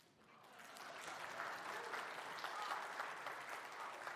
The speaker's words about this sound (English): Thank you for clapping.